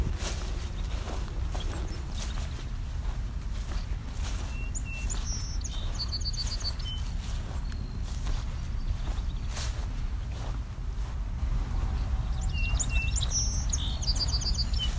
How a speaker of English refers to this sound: Red-winged blackbird.